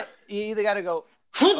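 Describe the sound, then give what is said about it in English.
A person talks briefly, then a sudden loud, bright sneeze bursts out near the end, sharp and airy with a voiced edge. “Bless you.”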